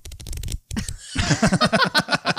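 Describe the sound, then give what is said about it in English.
Pages of a '78 issue of Tiger Beat magazine being flipped: a papery rustling burst, a brief gap, then a quick run of about ten rhythmic, fluttering flicks, fairly loud with no voices. “So are you flipping for a magazine or are you farting over there?”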